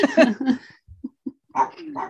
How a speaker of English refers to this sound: Don't mind my dogs barking in the background. Mm-hmm. They appreciate it too. They appreciate it. You have Benny's approval.